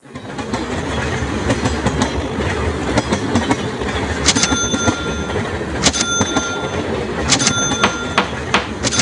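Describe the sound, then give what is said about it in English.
A CSX freight train rumbles steadily along the rails, with a constant low roar, metallic clanks and brief high wheel squeals recurring every second or two, loud. “CSX trains are the most cost-efficient way to move goods to market.”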